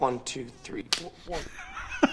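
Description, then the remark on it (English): Two sharp face slaps crack out about a second apart, loud, as one man slaps another in a film scene, cutting through a man's tense, raised speech. “It's him slapping him.”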